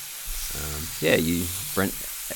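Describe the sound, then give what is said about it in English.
A steady, broad sizzle of meat patties frying on a hot grill as a couple of line cooks cook and chop onions in a restaurant kitchen, while indistinct voices murmur briefly over the cooking noise. “And from where you stand by the front door, you have a view of a couple of line cooks cooking meat patties and chopping onions.”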